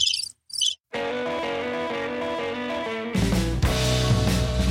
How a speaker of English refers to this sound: Everybody kind of gets quiet again. Roll crickets.